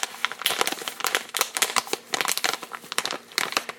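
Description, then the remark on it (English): A thick plastic bag of Great Northern popcorn crinkling and crackling, a continuous stretch of irregular sharp rustles and crisp snaps, fairly loud, with no talking. “This is, best way I can describe it is that it comes in a plastic bag. It's thick plastic, you can tell by the sound.”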